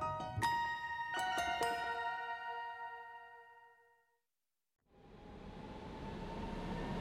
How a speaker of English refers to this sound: On the train to Cologne